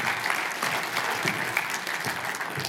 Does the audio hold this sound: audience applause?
yes